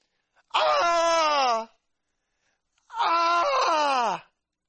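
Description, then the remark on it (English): A man's voice imitates the anguished, throaty scream of a naked, demon-possessed man crying out at the sight of Jesus: twice, each a loud harsh wail of about a second that slides downward in pitch, separated by a brief silence. “To raise a cry from the depth of the throat, to cry out an unpleasant scream.”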